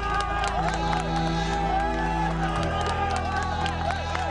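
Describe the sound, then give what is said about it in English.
A large crowd cheers and shouts continuously as a man trapped after an earthquake is dug out, many voices overlapping in a loud, dense roar with scattered whoops and some clapping, steady throughout. “People were digging out a man who was trapped, and he came out, and everybody in the crowd was cheering.”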